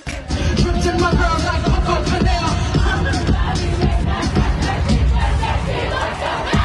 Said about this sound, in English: She was letting the crowd sing.